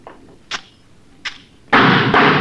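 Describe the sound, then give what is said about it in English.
Two sharp gunshots about a second apart, each with a short ringing tail, then a loud, steady rushing roar that starts abruptly and continues to the end. No one speaks. “Vince is a good shot.”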